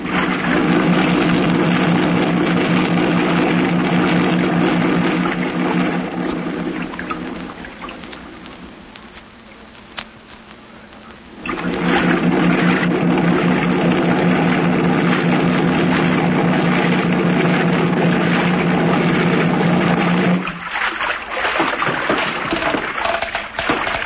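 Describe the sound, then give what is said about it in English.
A motorboat engine drones steadily with water rushing and splashing around it as the boat nears the mainland, easing off for a few seconds midway, then roaring back loud before cutting out near the end as it is run up alongside an old piling to tie up. “Run the boat up alongside that old piling and tie her up”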